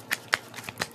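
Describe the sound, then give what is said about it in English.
Tarot cards being shuffled, a quick series of about five crisp, papery slaps and riffles in an uneven rhythm, with no voices. “Three more times. I'm just shuffling here.”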